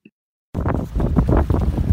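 After a half-second of near silence, loud wind roars and buffets the microphone with a deep, rumbling rush aboard a boat on the ocean. No one speaks.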